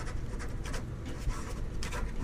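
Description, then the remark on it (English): A pen scratches across paper in quick, uneven strokes as someone signs their name, a soft scribbling with a faint low rumble underneath. “I am going to take a piece of paper here. And I'm going to write on this piece of paper.”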